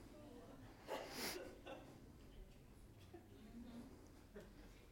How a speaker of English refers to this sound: I heard gasps, I heard shocks, I heard giggles.